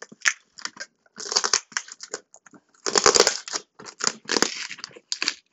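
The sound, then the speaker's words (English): Crackly snips and crunching as scissors cut through a lot of heavy packing tape on a package, in irregular bursts with short pauses between, no voices. “Yeah, we're gonna have to use scissors because he used a lot of tape, which is okay.”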